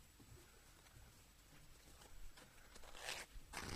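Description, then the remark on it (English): A trouser fly zipper is pulled up in two quick, raspy bursts near the end, after a few seconds of soft rustling and faint taps. The sound is quiet and no one speaks. “Is your fly undone?”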